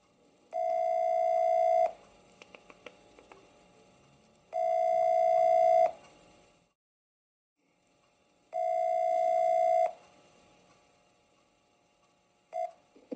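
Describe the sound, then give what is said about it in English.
An outgoing phone call's ringing tone repeats three times, each steady ring lasting about a second and a half with pauses between, clear with no talking, followed by a brief click-like blip. “If you can hear this ringing.”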